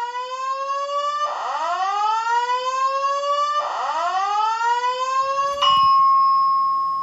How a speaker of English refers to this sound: Or, alternatively, if you want to be woken up at 7 a.m. by a fire alarm on your hotel floor, like I was, that could happen too.